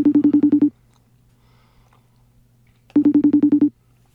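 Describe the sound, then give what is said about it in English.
An outgoing telephone call rings: two bursts of a rapid, buzzy warbling ring, each under a second long and separated by a couple of seconds of near-silence, with no voices. “Should I give his telephone number out and have people call him?”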